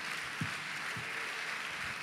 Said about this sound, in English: I'm thankful for our women. I wish some other men would clap and thank God for our women this morning.